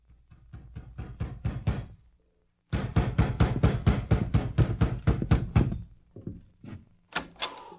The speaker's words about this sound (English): It must have been about midnight when I heard a knock at the door.